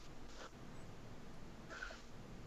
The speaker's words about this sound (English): Can hear a bit of breathing. He's alive. That's a good start.